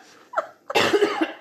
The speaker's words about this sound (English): … coughing.